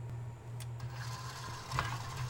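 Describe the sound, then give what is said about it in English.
An electric stand mixer runs steadily, its low motor hum droning under a soft whir, with a few brief clicks and scrapes as the beaters cream shortening with tahini, sugar, maple syrup and vanilla extract into a thick batter. “So I guess it's time to get the mixer running.”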